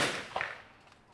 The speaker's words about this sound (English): You can relive the war in a small way by banging away at the firing range on weapons that soldiers actually used.